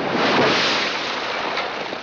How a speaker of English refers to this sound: The house of straw blew to the ground.